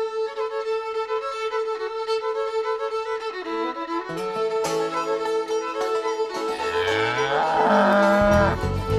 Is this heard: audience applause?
no